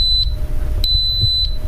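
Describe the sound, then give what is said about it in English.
A pressure cooker gives a few short, high electronic beeps as its start play button is tapped, evenly spaced and clear over a low background hum with no talking. “You tap on start play, and you will hear the pressure cooker beep.”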